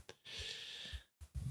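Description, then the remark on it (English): A quick yawn, one drawn-out breathy exhale lasting under a second, then a short pause and a soft catch of breath. “Oh, I'm sorry. Just a quick yawn.”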